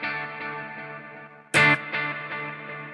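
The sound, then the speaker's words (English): Sustained electric guitar tones, played through an effects pedal with the echo blend knob set at noon to mix reverb and delay, wash together with reverb and echoing delay repeats, broken by one bright, loud strum in the middle before the effected ringing carries on. No voices. “You know, I think it sounds like it's using some of both.”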